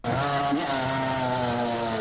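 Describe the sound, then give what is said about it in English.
A motorbike ridden hard along a street drones loudly and steadily with a buzzy, high-pitched whine, its pitch lifting briefly early on before settling into an even rev. No voices. “He was introduced and described by his mother while he was filmed hooning about on the street on his motorbike.”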